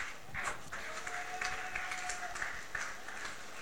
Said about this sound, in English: Let's clap for Jesus.